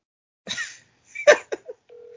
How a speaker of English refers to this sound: Hey, can y'all hear that? Yeah, we hear that loud ass ringtone.